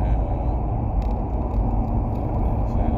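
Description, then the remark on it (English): Steady low road rumble from inside a moving car in traffic with semi trucks ahead, a continuous engine and tire drone with faint higher hiss and brief mechanical clicks on top, fairly loud and unbroken throughout. “There's traffic. More traffic. I don't want to get behind them semis.”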